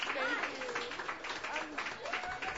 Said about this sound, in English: A big hand of applause because it's her first time and she's awesome. So, thanks.